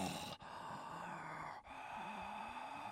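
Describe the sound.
A person imitates their own really loud, heavy breathing, a sustained breathy rush broken by two brief pauses as the breath turns over, with no talking.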